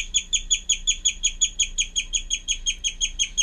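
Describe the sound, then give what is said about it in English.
A guinea pig wheeks in a rapid, steady series of shrill, high-pitched whistling squeaks, about five per second. The sound is fairly loud over a faint low hum, with no talking. “Guinea pigs make a wheat, wheat, wheat, wheat, kind of a whistling sound.”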